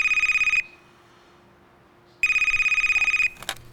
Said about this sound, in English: It all seemed pretty clear cut, but then, from out of the blue, our office got a phone call.